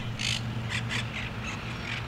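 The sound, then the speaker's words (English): A flock of parrots in a nearly 500-acre city park gives harsh, screechy squawks, about six calls in quick irregular succession, set against a steady low rumble of city traffic. “Some may consider this a place of tranquility in the city. But then you hear the parrots.”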